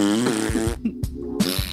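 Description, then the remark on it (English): A loud, buzzy fart rasps out for nearly two seconds, wobbling in pitch with a brief sputtering break partway through. Nobody speaks over it. “Those farts litty, y'all, okay?”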